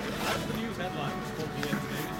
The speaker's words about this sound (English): Don't keep your bag open. Someone will steal your wallet. Oh, thank you. Let me just zip this up.